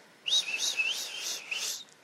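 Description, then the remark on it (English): A person whistles a short, winding melody imitating a snake charmer's flute, the notes sliding up and down in a continuous wavering line for about a second and a half, clear. “Now it was much more fluid than that, but you know, I can only do so much with a whistle.”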